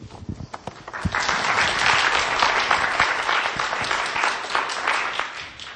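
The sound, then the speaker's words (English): An audience breaks into applause after a presentation, starting with a few scattered claps and quickly swelling into steady, dense clapping that holds at a fairly loud level for several seconds. “I can't clap with a live microphone in my hand.”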